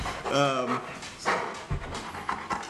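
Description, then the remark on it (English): An excited male dog lets out a short, high whimpering whine, followed by quick, breathy panting huffs and snuffles, moderately loud. “He's excited right now.”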